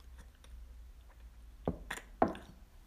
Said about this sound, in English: All right, I'm going to take a sip of water here.